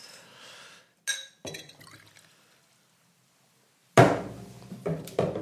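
A brief sharp pop from an opening bottle of Goose Island Honker's Ale, then the beer pouring into a glass in several loud bursts with faint glassy clinks, no talking.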